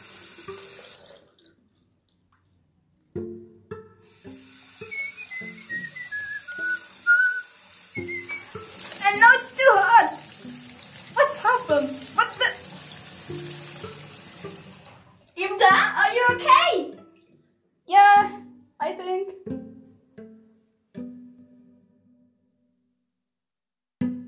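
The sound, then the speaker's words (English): Water gushes steadily from a tap for several seconds, a loud hissing rush, while a voice talks over it and continues in short bursts after the flow stops. “Yes, the water pressure is very different here.”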